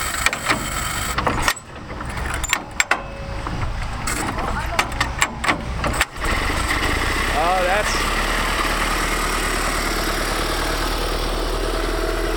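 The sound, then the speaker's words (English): A small vintage 20-horsepower engine, started with a front crank, choke and spark-coil ignition, starts up after some clattering and then idles steadily, a loud continuous rumble with a man briefly speaking over it. “That is a lot better than my lawnmower, Mr. King. About the same horsepower. It's 20 horsepower.”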